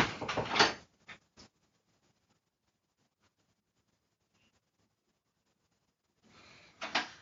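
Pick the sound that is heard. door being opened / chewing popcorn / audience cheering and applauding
door being opened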